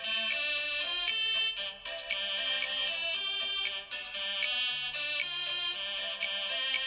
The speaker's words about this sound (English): This is a compa version of. What's compa now? It's a Haitian music.